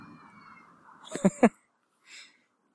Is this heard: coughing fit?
no